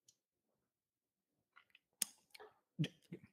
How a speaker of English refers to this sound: says I as I take a sip from what many believe to be liquid poison.